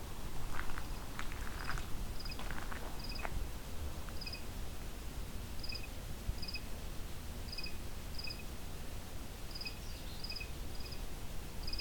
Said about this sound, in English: And a cricket.